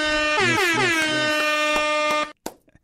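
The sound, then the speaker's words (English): A loud air horn sound effect blares in rapid, repeated blasts that merge into one long, brassy honk, then cuts off abruptly, followed by a brief click and silence. “I was really trying to let them air horns fly, but it just didn't want to work.”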